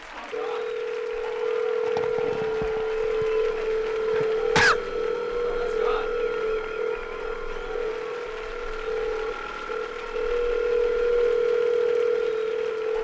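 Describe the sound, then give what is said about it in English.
Telephone dialing tones hum steadily for about thirteen seconds as a call is placed, a sustained electronic beep-tone with a sharp click partway through, even in loudness, with no talking. “Is there a number? Let's call God.”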